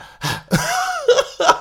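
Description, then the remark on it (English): A voice imitates heavy puffing and panting into a microphone, showing breathing trouble from being sick: four rough, breathy bursts in quick succession, the longer second one carrying a strained, groaning vocal tone, with no words spoken. “So I'd be at the microphone and just puffing and panting like this.”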